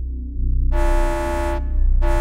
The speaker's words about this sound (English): The alarm interrupted the small crew of Intergalactic Rescue 4 at their breakfast. Just as Jason and Anne settled down to protein flakes and coffee, it sounded loud and clear against the background hum of the ship's idling pulse drive.